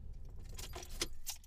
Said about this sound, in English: That's the car turning off. Just so you know it was real. The jangle of my keys. I'm sure you can hear now that the jangle keys. Jangle, jangle!